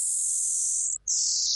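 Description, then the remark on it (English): A repeating space radio signal heard by Canadian researchers, played as sound: a loud, steady high-pitched hiss that cuts out for a split second, then returns just as strongly. No voices. “So that's the sound that these Canadian researchers have been hearing”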